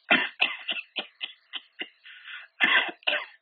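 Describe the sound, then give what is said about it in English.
A person imitates an infant's staccato cough, the cough of chlamydia trachomatis pneumonia: a rapid run of a dozen or so short, sharp coughs in choppy bursts, fairly loud, with no talking. “You know what they call that? Staccato cough.”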